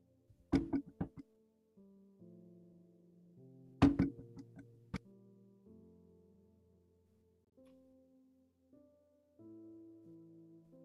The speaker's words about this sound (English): Just bear with me one moment while I knock on this door.